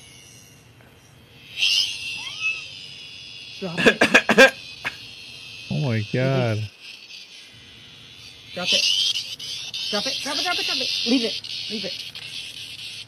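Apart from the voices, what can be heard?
cicada buzzing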